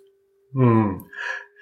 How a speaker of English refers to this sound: you are breathing heavily. That's Harold and Maude in my left lung lobe.